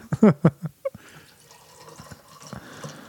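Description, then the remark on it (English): Perrier sparkling water pours heavily into a glass, opening with a few sharp splashes and clinks, then settling into a steady, fizzy stream that continues to the end. “That's a heavy pour. That's Perrier.”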